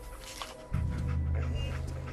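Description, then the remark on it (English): A dog pants in quick, steady breaths, with a low rumbling hum rising underneath after a brief moment and continuing to the end. “Lost the scent, boy. What am I doing here? Gwinnett Stout. Okay, Gwinnett Stout. One of his creature comforts. Dog meat find something?”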